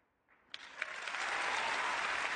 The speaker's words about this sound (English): Only Paul Newman got a bigger round of applause.